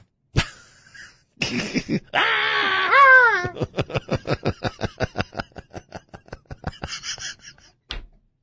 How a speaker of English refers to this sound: But they'd have to throw in, what is it, the Wilhelm scream?